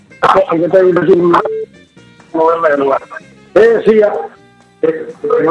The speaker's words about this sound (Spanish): Hace mucho eco, tiene mucho eco. Creo que me escuché mejor ahora.